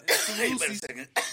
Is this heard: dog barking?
no